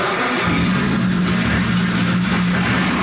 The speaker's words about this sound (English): It sounds unlike any street Ferrari you've ever heard. It is a race engine, and it was built to be a race engine.